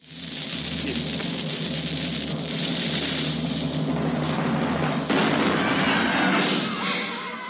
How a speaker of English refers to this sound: The question is, do we shoot this episode out of the cannon? The cannon! The cannon! The cannon! The cannon! Fire the cannon.